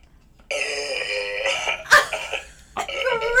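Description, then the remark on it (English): A man burps into a camera: a long, loud, drawn-out burp rumbles for about three seconds with a buzzing, voiced tone, broken by a couple of harsher gurgling bursts near the end. No one speaks. “He burped right into the camera.”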